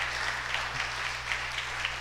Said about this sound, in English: All right, you can clap your hands for these two.